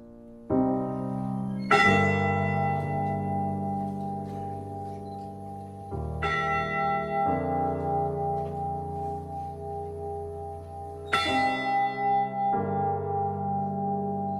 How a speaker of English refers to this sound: The day after the wreck, the Mariners Church in Detroit rang its bell 29 times for each of the crewmen lost. And this ceremony continues in Michigan today with the ship's actual bell, raised in 1995 and kept at Whitefish Point.